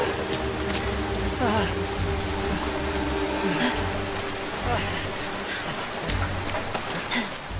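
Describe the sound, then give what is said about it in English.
Heavy rain pours down in a steady, dense hiss with a low rumble underneath, the torrential downpour continuing without a break throughout, during a scene of the South Korean film Parasite. “In Parasite, the recent multi-award-winning South Korean film, it's a never-ending series of staircases that the film's central characters descend during a torrential downpour.”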